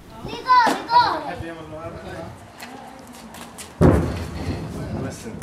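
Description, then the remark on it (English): Children shout and play in a village courtyard just after sunset, then a single deep distant artillery boom from nearby fighting between Israeli forces and Hezbollah thuds and rumbles away while their voices carry on. “This was just after sunset, and we heard booms like that every few minutes, sometimes more often.”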